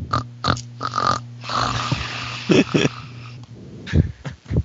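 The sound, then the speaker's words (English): Someone imitates snoring in the other room, with a series of rough, nasal snorting breaths repeating over a few seconds, loud and voiced rather than natural. “You both hear snoring in the other room.”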